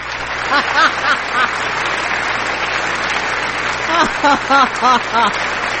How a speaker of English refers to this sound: Now I get a double clap.